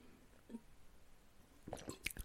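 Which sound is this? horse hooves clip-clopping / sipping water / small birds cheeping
sipping water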